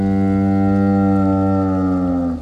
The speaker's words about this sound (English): And as the wind blows just softly, instead of the soft rustling of leaves that you'd expect to hear, you hear this creaking groan.